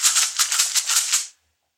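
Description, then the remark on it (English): Dice rolling: a quick, bright clatter of about a dozen hard plastic clicks over just over a second, then sudden silence. No one speaks. “Why don't you roll for it, honestly? That's right, we roll.”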